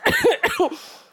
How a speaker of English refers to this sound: Excuse me, I'm just going to have an air conditioning-induced coughing fit.